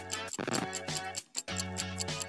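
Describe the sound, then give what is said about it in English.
A game timer, reset for a timed word game, ticks steadily over a bright, sustained electronic tone, the clicks falling in a quick regular rhythm with one short dropout midway. Moderately loud, with no talking. “All right, so let me reset the clock and your time starts now.”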